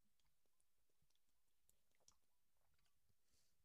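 Someone takes a long sip of a drink, with soft wet mouth clicks and swallowing noises, fairly quiet and with no one talking.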